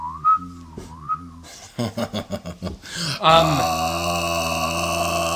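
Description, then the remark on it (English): A warbling whistle, made by blowing, swoops up and down twice like a sci-fi UFO, followed by choppy throaty pulses and a loud sustained buzzing drone. “it hits you with the … when you blow it. Yeah, like it just goes, well, that's what UFOs always do”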